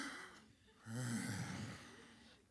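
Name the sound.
deep inhaled breath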